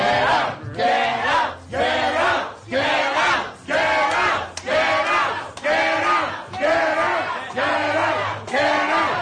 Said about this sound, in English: All right, so that was the entire restaurant yelling for the health inspectors to get out, and the health inspectors in the video turn tail and run.